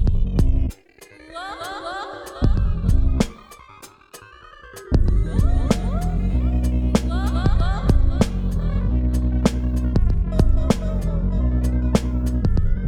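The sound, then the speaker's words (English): Several voices chant a melody together, a sustained, droning polyphonic hum with gliding tones, punctuated by sharp, regular percussive strikes; fairly loud, briefly dipping before swelling again, heard through the sulfur steam of hot springs. “But I can hear them chant a melody.”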